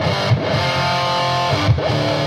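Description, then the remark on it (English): An electric guitar played through an amp with only a clean boost and no distortion, the amp set fairly low: two strummed chords, each ringing out loud and gritty with a long, steady sustain, and no voices. “But the amp, all the distortion, this is without them, because it's just a clean boost.”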